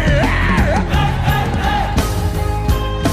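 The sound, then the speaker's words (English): A large crowd shouts loudly together in one sustained, rising roar, yelling the phrase "kilo de" at the devil, many voices overlapping in a dense, echoing mass of yelling for a few seconds. “Somebody say, kilo de. Yell it loud unto the devil.”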